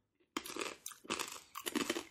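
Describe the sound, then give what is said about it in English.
Loud crunching on original, regular-flavor corn nuts, with three dense bursts of brittle chewing one after another after a brief quiet start. No one speaks. “You're going to hear crunching in this episode, folks.”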